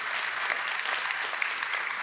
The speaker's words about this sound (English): We give what we can. Yeah, give the Lord a clap offering.